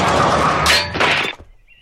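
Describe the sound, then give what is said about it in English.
A loud cannon blast, fired at a lookout tower, runs straight into the tower's crashing collapse, with two heavy bursts of breaking, shattering debris in quick succession before the noise cuts off abruptly; a scene from the 1960s TV show F Troop. “So That scene of a cannon firing at a guard tower and the tower collapsing is from the show F Troop, the 60s show”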